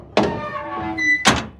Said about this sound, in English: The intercom clicks off, and you hear the sounds of a door grinding open.